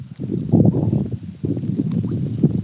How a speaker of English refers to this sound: It sounds windy there. It is windy.